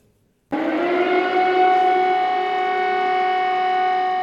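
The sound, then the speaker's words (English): An air raid siren in Kyiv, Ukraine, on February 24, 2022, signaling the first Russian bombs, starts abruptly after a brief silence and holds a loud, steady wailing tone with rich harmonics, continuous with no voices. “On February 24th, 2022, sirens signaled the first Russian bombs falling on Kyiv.”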